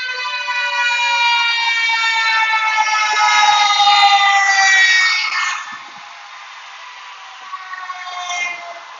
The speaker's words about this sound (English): So, I think this is the ambulance. Good. Yeah. So, that means you gotta. No, it's a fire truck.